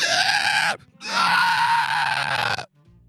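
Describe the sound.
Two loud screams: a shorter one, a brief gasp-like pause, then a longer strained scream that cuts off abruptly, with no talking.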